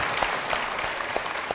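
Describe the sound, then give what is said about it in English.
An audience applauds author James Dashner in a steady, dense patter of many hands clapping, a continuous crackling wash with a few sharper claps standing out, no voices over it. “But I want to give James Dashner a round of applause.”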